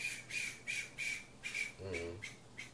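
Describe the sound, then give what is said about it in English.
Birds squawk outdoors in the neighborhood near the end of summer, a rapid series of harsh, repeated calls, steady, with one lower, throatier call breaking in near the end. “Some change in the neighborhood, because it's getting close to the end of summer. Different birds.”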